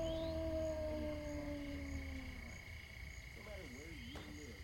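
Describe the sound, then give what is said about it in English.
A long, drawn-out wolf howl slowly falls in pitch, then breaks into a wavering, undulating tone near the end, heard over a steady low background rumble. “It sounded like a wolf.”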